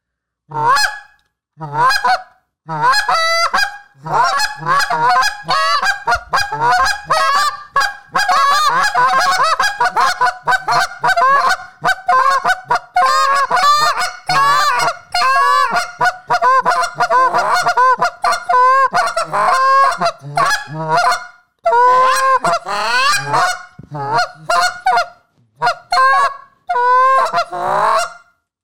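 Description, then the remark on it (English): A loud goose-calling cadence imitating geese: sharp honks mixed with rapid clucks, delivered in quick bursts almost nonstop for about half a minute, with only a few brief pauses and no talking. “No, why don't you start us off and just kind of do like a cadence where like you see geese.”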